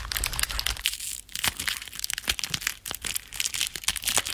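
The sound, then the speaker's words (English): A sweet wrapper being unwrapped: a steady run of bright, crisp crinkles and crackles, irregular and fairly loud throughout, with no voices. “No, that's a sweet unwrapping, if I'm to be believed.”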